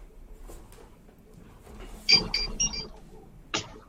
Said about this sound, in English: Did somebody's Kim Possible alarm just go off? I thought I heard a Kim Possible beep.